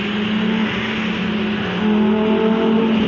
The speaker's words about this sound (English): Those cars. We've got three race cars or Lamborghinis or something. Sports cars.